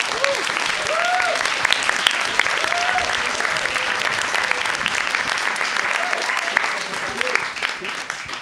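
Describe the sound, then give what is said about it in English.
Sustained audience applause, dense and steady for several seconds, with a few scattered voices and cheers rising faintly above the clapping. “You guys, okay, let's give a huge round of applause”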